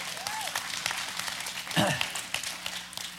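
An audience breaks into steady applause, many hands clapping in a dense, continuous patter for a few seconds, with a brief voice rising briefly through the middle.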